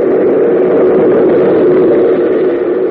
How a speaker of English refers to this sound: Oh, subway train. Runs right outside this tunnel, I guess.